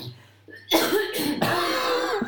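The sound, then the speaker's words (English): Two harsh, rasping coughs burst out, the first around three-quarters of a second in and a second one shortly after, each with a rough, throaty, drawn-out tail. “So there's a woman who had a cough, and they were saying, a bit like that cough, actually.”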